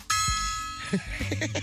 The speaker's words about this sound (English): What is that? I got a gong. Oh, a gong. It's the gong it's I've the seen little, on Amazon. Tiny gong. We might have to tune this thing or get a bigger one or something. It doesn't have quite the impact that I thought it would